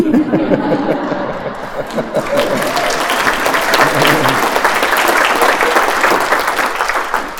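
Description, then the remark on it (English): An audience at a keynote talk bursts into sustained applause at the words "dirty joke", dense clapping filling the room for several seconds, with scattered laughter and chatter mixed in near the start. “You guys just clapped for the word to dirty joke.”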